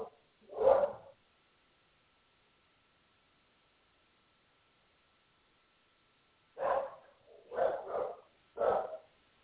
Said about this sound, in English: All right, I'm sorry. My dog is going crazy. There's somebody at the door. Okay, so that kind of, you know, pushes things aside for a moment until I can get her calmed down.